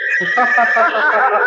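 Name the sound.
horse neighing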